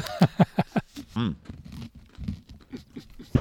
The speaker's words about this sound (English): No crunchy. Crunching. Crunch, crunch, crunch. Yeah, it's like a chocolate-covered pretzel, pardon me. Yeah. With marshmallow.